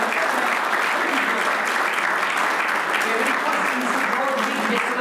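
A full round of applause, many hands clapping in a dense, steady wash of sound that stays loud and even from start to finish, with no voices breaking through.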